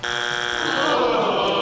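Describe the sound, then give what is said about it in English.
A game show buzzer sounds one long, loud, harsh blast lasting under two seconds, with a steady raspy tone that shifts slightly partway through. No one speaks. “Just buzz me.”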